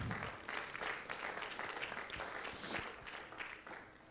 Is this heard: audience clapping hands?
yes